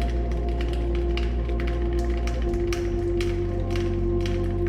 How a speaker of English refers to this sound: Relentlessly, they come to your island, seeking to penetrate the moist darkness of your cave, ears straining to catch the hiss of your snakes beneath the ever-present drip, drip, drip of water trickling through stone and soil to pool at your feet.